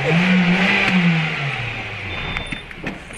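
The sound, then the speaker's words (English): A small remote control car whines and revs loudly, its high motor pitch sliding down as it winds off, followed by faint clicks and rattles. “Is that a remote control car?”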